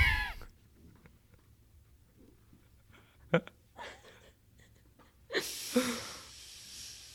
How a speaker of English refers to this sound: Thank you for deep sniffing into the microphone.